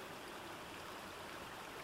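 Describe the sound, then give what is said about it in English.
A crystal clear babbling stream meanders steadily over a shallow riverbed, a continuous bright rush of trickling, splashing water with no voices, evenly loud throughout. “The sound of a babbling stream became audible.”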